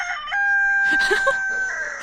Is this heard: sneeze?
no